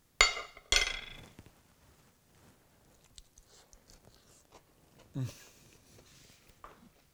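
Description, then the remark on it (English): Two sharp clinks of a fork against a plate, followed by quieter scraping and clicking, then a crisp crunch of a bite into a zucchini fritter topped with non-fat Greek yogurt and green onion, and soft chewing sounds. “And now a bite.”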